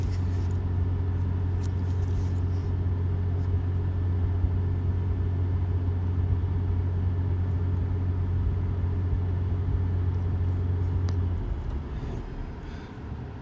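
A steady, low engine rumble and road drone fill the inside of a moving car, holding constant before easing off near the end. No one speaks.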